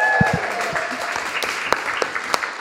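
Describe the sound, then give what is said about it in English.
An audience claps steadily, a dense patter of many hands with a few sharper, louder claps standing out, applauding two people who ran the tech at an audio fiction session. A faint whistle-like tone sounds briefly at the start. “Can we give a rousing applause for those two, please?”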